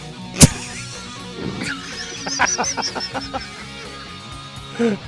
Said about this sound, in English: The tip of the week is get outside during spring season and listen to turkeys gobble because it's spine.